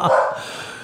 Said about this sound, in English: Molly barks at the mailman.